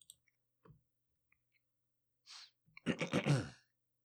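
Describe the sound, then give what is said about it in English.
Quiet sipping of water: a few soft mouth clicks, a brief breathy intake, then a satisfied sighing exhale after the swallow. No one speaks. “Sip of water.”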